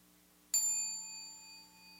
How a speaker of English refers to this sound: The sound of the bell arose in awareness. It shone in awareness. It faded away in awareness.